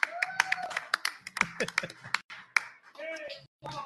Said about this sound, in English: So make sure you're taking care of your great wait staff. If you're listening to us right now, please give an applause to full wait staff here at Cardinal Nation.